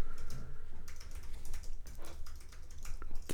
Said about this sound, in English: Your typing is on point.